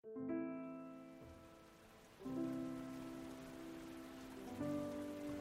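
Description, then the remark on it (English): Steady rain hisses in the background while three sustained musical chords swell in one after another, each ringing out before the next begins; rain falling during a burial at a cemetery outside Raritan. “Two days later, in the rain, Hannah Hazel Gilley was laid to rest at Hackworth Hill Cemetery outside Raritan.”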